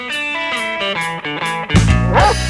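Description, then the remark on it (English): A quick series of short, tuned dog barks strung into a little melody, like a sound-effect jingle for the lost-and-found dog spot on the WLAF Trading Post, closing with a louder, drawn-out bark. No one speaks. “Lost your dog? Found someone else's dog?”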